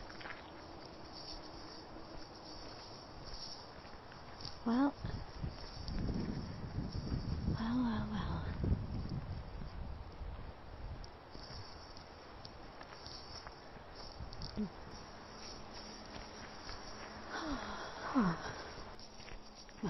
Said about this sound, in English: crunch of a leaf there.